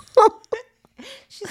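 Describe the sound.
A human voice imitates someone's low, eerie ghost-like growl, not a dog growl, in a few short, raspy bursts with brief pauses between them, fairly loud.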